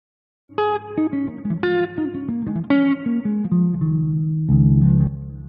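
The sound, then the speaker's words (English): A short, smooth electric guitar sting: a few bright, sustained notes with effects play one after another, then settle into a held, fuller low chord. No one talks over it. “Yeah, ran out of the cheer sound bites. I have to go the smooth guitar.”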